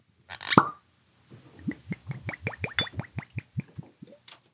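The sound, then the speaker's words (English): A single crisp cork pop from a bottle being opened rings out near the start, followed by a steady run of quick, rhythmic glugging bursts, with no voices. “The cork pops very satisfyingly.”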